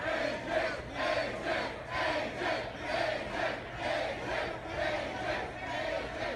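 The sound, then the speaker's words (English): A large crowd chants in unison, loud and steady, with a repeated rhythmic pulse of massed voices roughly twice per second throughout, and no single voice standing out. The crowd is chanting for wrestler AJ Styles as he comes up to his table to start an autograph signing. “And that's the crowd chanting for AJ Styles when he comes up to his table there to start signing for all of us.”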